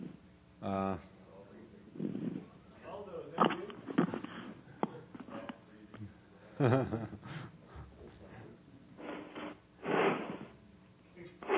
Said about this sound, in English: Yes, we are hearing some good breathing going on.